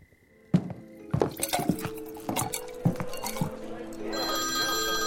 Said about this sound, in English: Oh, what's this? A phone call? Why, nobody's called me on this phone in 6 years.